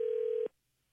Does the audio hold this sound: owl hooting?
no